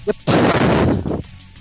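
A tea drink pops open: a small click, then a loud, breathy rush of fizzing air that lasts about a second before cutting off.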